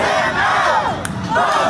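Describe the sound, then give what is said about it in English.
A crowd at Ruth Bader Ginsburg's memorial boos Donald Trump and chants "Vote him out", a dense wall of many voices with rising and falling vocal swells and a couple of sharp bursts, continuous and steady throughout. “Appearing at Ruth Bader Ginsburg's memorial, he was greeted by crowds booing and chanting, "Vote him out."”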